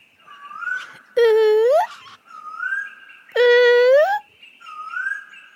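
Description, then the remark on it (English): A human voice imitates a koel's call, alternating softer rising whistled notes with two loud, strained upward-sweeping cries, each about a second long, in a repeating pattern. “Can you make the sound of a coel with me? Let's give it a try.”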